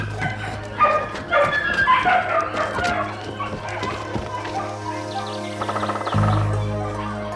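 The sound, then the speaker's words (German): Excited dogs bark and yip in quick, overlapping bursts, mixed with a few whimpers, fairly loud over a steady low hum. “Aber die Hunde waren außer sich vor Freude.”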